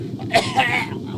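Two quick, rough coughs, one right after the other, with a harsh throaty edge and no talking around them.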